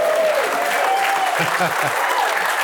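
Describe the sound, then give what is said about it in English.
A live crowd applauds and cheers steadily for a couple of seconds, dense clapping filling the room with scattered shouts and whoops rising above it. “Let me hear our crowd here from Wichita, Kansas.”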